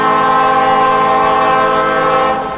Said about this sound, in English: Foreshadowing klaxon, please.